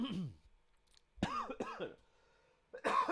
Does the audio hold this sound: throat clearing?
yes